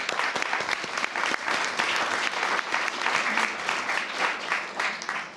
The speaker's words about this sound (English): If you're here, if we can just give them a round of applause, and I'll explain why in a moment.